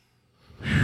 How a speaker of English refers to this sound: And that means breathing with our audience. Breathe.